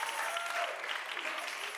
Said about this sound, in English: A couple people clapping. It's all right. Don't look around.